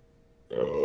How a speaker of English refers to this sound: I'm not editing that burp out either. You can fucking hear it.